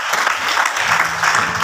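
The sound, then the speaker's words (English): An audience claps hands for themselves during a sermon, a dense, steady wash of applause from many people filling the space, sustained and fairly loud throughout the short burst. “Clap for yourself.”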